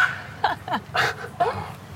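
A small dog gives four quick, high-pitched yaps in about two seconds, fairly loud, with a low steady hum underneath.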